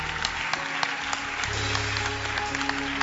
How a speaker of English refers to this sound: Come. Clap your hands for them as they come.